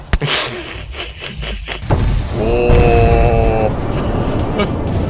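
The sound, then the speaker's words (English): A massive explosion erupts about two seconds in, a sudden loud burst that rolls into a sustained, rumbling roar with a brief high whining tone over it before fading slightly. “I'm sure we're out of sync as far as playback here, but I'm just watching the massive explosion.”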